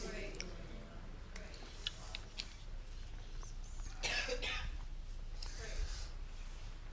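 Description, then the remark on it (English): A person coughs and clears their throat several times in quick succession, the harsh bursts fairly loud over a low steady background hum. “Let's pull out the faithful cough drop and we'll move on from there.”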